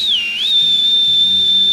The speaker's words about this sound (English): I'm gonna let out, another whistle, hoping that there's any Shinra'ka Wrath in the area that would hear it just the loudest.